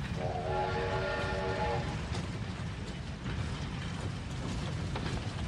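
A steam locomotive rumbles steadily, and a sustained horn blast sounds over the noise for roughly the first two seconds before the train carries on chugging alone.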